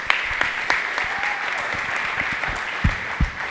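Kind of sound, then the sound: crowd, round of applause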